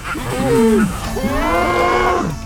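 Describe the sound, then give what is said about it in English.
A bull-like animal lets out two loud, drawn-out grunting bellows, the second cry rising and wavering before trailing off, with no voices around it. “Its cry was an animalistic grunt, like the sound of a cow being slaughtered, and its head was that of a bull.”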